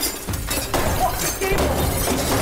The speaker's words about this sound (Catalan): So you're really not seeing this clock, right? I promise you there's a clock there and I would like to see you smash it. Okay, I believe there's a clock there. That sound is so ominous.